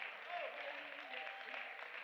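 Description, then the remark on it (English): An audience claps steadily together in a morning hand clap of praise to Jesus, a dense, sustained wash of many hands applauding, with faint voices mixed in beneath the clapping. “If you are, let's do something about it right now and offer a hand clap of praise, because he is worthy.”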